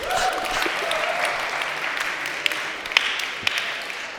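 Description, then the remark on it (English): A group of people clapping together in a steady, dense patter of applause, with a few sharper individual claps standing out near the end; no one speaks over it. “Everyone clap”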